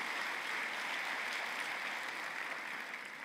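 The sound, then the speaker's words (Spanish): A church audience at a Holy Week service claps together, giving themselves a round of applause at the preacher's call, in a steady, dense wash of applause that holds at an even level for about three seconds, with no voices standing out. “Date un aplauso.”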